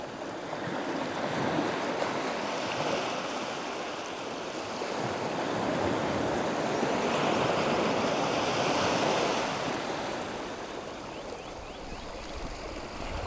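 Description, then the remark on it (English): Gentle sea waves wash steadily against the shore, a soft continuous surf that swells and recedes in slow surges, with a light breeze in the background and no voices. “And when you're ready, gently let your eyes close and float away to our private beach, where the sea gently laps away at the shore.”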